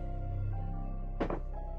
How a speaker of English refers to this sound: And the door shuts.